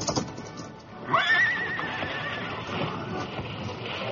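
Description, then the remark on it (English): A horse gives a sharp, rising whinny near the start, then hooves clatter and pound steadily beneath a busy, noisy background as the horses Silver and Scout charge forward at speed to jump a wide gorge. “Much too wide for the horses to jump it.”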